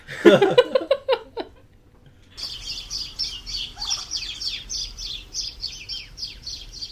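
Little birds chirp rapidly in a steady, high-pitched chorus that runs for several seconds, preceded by a short burst of louder, harsher calls at the start.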